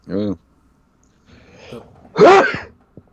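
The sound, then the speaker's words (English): A sick person gives a single loud, harsh cough, preceded by a short voiced sound and some quieter throaty noises, with a small click right after. “Yeah, I was even fucking coughing.”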